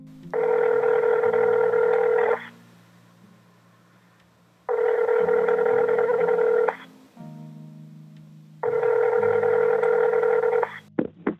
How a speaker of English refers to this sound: So I picked up the phone and called her number, hoping that after more than 5 years, it still remained the same.